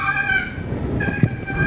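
A wooden box turkey call purrs from just the weight of its lid, in a thin, whiny, bird-like tone, sustained and slightly wavering, with a short soft thump partway through and no talking.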